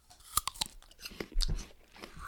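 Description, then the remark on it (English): A bite into a crisp Jazz apple, followed by several sharp, crunchy chews. The crunches come in quick irregular bursts with a low thud of jaw movement, with no talking. “Number 2 is a jazz apple. All right. I'm taking a bite of mine.”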